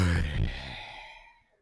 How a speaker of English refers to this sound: And there you have it. First yawn of season three.